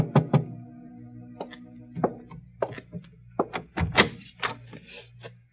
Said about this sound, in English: At 7:45, there was a knock on my door.